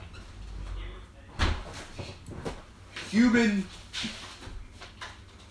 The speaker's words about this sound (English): So I opened the door